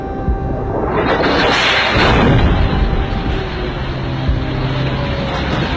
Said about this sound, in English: two missiles flew over their heads and exploded into apartment buildings approximately a quarter mile from where they were standing.